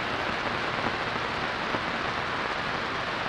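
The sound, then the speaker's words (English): Steady rain pours down in a dense, even hiss, with countless drops pattering on a surface and no pauses or voices throughout. “Thunder rumbled overhead.”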